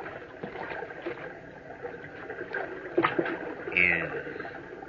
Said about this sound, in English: Water. A brook. My tongue. It's parched. Now I can drink. Now at last I can take a drink. Thank goodness for this brook.